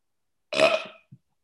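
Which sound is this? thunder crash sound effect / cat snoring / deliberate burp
deliberate burp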